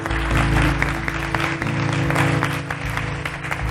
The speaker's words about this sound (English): Can we clap our hands this morning for all those who made that prayer and that decision today?